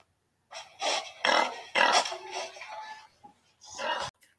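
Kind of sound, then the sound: animal, pig grunting and oinking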